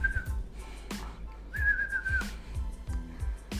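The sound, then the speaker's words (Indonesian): A person whistles a few short, steady tones, one note held longer than the others, with low thumping and rumbling noise underneath and no talking. “Cek, pamer bisa siul-siul nih.”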